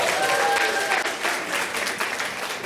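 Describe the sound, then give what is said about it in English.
A crowd breaks into steady, loud applause welcoming first-time visitors, dense clapping filling the whole stretch with a few brief whistle-like tones riding over it early on. “First timers. Come on, let's just welcome them.”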